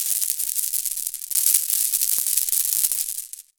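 A BB pistol is shaken after ammo is poured in, giving a steady, hissy rattle of many tiny pellets and scattered sharp clicks, lasting a few seconds before stopping. No one speaks.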